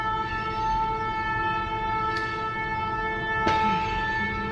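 A train passes outside, its horn sounding one long, steady blare over a low rumble, with a couple of sharp clanks breaking through near the end.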